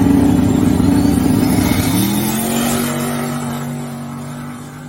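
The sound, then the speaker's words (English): A blue drag race car roars down the track, its loud engine note climbing in pitch with a shift partway through, then gradually fading as it pulls away. No one speaks. “And, you know, now he's running his blue car and he's been out making some good hits with it. Here's a clip of it here.”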